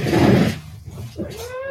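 A cat lets out a drawn-out, plaintive meow, following a brief burst of rustling noise at the start; the cat is begging to be let outside.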